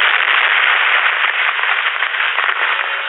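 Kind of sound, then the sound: sound effect, car explosion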